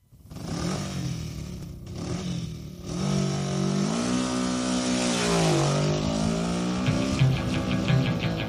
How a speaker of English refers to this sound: But I tell you what, I can help you out because my sister, she's got a brand new motorbike.